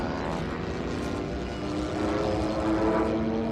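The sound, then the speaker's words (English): Propeller aircraft engines in a two-on-one dogfight in the film 1917: a steady, throaty drone with humming tones that waver in pitch, swelling a little louder toward the end. No one speaks. “Dogfight. Who's winning? Us, I think.”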